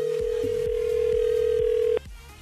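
A telephone call placed by Miles from iHeartRadio Nights for the Virgin Radio Pays Your Way contest rings out with a single steady electronic ringback tone lasting about two seconds, then cutting off abruptly, over a quiet rhythmic music bed.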